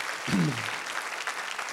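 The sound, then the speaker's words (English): An audience breaks into sustained applause for the Lord one morning, a dense wash of many hands clapping that fills the whole stretch, with a brief voice calling out near the start. “If you believe that, give the Lord an applause of his banner of love over your life.”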